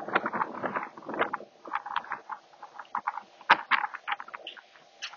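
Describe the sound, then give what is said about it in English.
Rain from a storm blowing in patters down in dense, irregular taps and splats, fairly loud, with a few sharper drops standing out, heard from a porch. No one speaks. “My three-legged wolf already beat me up there, and the rain is starting to come in.”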